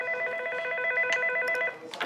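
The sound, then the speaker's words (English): A telephone rings with a steady, trilling electronic tone for over a second and a half, then cuts off as a few short clicks and rustles follow, clear. “And then he calls you on the phone, but he has a smirk.”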